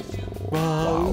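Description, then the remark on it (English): A low, rough growling with a rattling, pulsing texture that swells into a louder, sustained growl whose pitch rises slightly near the end. It lasts about a second, with no talking. “I don't know what the growling is.”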